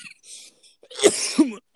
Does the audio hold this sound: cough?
yes